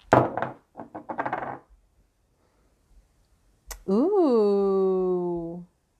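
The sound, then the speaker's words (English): Dice clatter onto a hard surface in a quick burst of rattling clicks and tumbling for a second or so, then stop. After a pause, a person lets out a drawn-out vocal exclamation. “So yeah, let me go ahead and drop these dice and we'll see what we get to start.”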